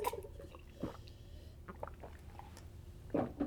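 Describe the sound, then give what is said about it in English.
Quiet sipping of water from a glass, with two soft slurping gulps about two seconds apart and faint little mouth and glass clicks in between, no talking. “I'm gonna have a sip of water.”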